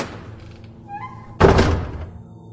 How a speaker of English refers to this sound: I stood in the darkness and heard the door close behind me.